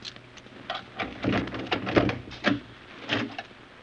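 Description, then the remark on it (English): A locked door in a cellar is unlocked and opened: a series of metallic clicks and rattles from the lock, then heavier thunks as the door swings. No one speaks. “We took the stairs down to one of the cellars Walked along some dark halls and then stopped in front of a locked door.”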